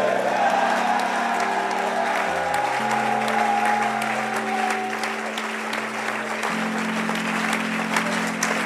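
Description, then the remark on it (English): An audience claps and shouts "amen" at the end of a prayer in a dense, steady roar that fills the whole stretch, with sustained low keyboard or organ chords holding underneath and shifting pitch partway through. “And everybody shouted, amen.”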